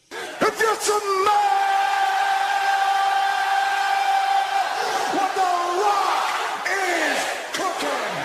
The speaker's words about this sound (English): And believe me, as soon as you do, you will be screaming something along the lines of this.